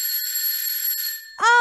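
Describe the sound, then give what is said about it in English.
A bright doorbell rings with a sustained, shimmering metallic tone that slowly fades, then a second, louder chime tone cuts in abruptly near the end. “I'm thinking like a doorbell.”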